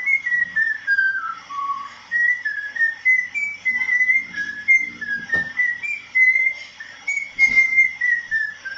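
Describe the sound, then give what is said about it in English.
A person whistles a melodic tune, the clear pitched notes gliding and stepping continuously for several seconds with short breathy pauses between phrases. “They decided to share with us their beautiful whistling abilities.”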